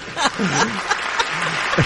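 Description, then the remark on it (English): A steady wash of sitcom studio audience clapping fills the two seconds, with scattered whoops, cheers and chuckling voices rising over it, loud, greeting the entrance of the character Van, played by Michael J. Fox. “It's like I'm at the sitcom, and right here comes Van, and I just cheer.”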